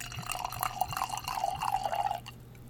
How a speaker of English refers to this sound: So, let me get this opened up. And give it a little pour. Coincidentally, this is also milled to 60%.